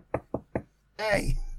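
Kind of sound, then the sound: impact, knocking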